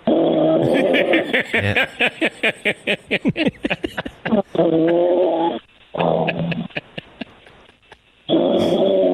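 Loud, rough snoring with long drawn-out growly snorts and a stretch of fast rattling pulses in the middle, repeating in uneven bursts with short gaps between.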